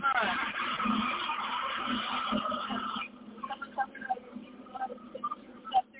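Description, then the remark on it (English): A high school bus carrying kids roars past, a loud rush of engine and road noise with a high squealing edge that cuts off after about three seconds, leaving quieter background voices. “Oh, here comes the little kitty bus.”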